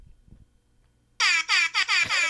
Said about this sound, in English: He used to have, every time something would happen, he would take out the air horn and just use it. And then he got lazy and didn't want to open it up anymore.